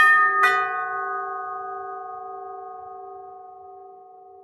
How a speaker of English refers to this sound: The sound of the calling bell brought him out of his ruminations. For a moment, he wished someone else was there to answer the door.